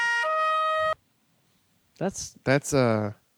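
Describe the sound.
A bright, electronic phone alert tone called Police plays for about a second, stepping briefly between notes before cutting off. After a short silence, someone speaks.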